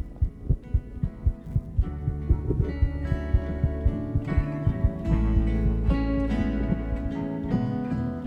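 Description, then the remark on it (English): A muffled heartbeat, picked up by a worn microphone during a hug, thumps in a steady rhythm while soft sustained musical tones swell beneath it and gradually grow fuller. No one speaks. “As we hugged, the microphone I was wearing picked up the sound of a heartbeat.”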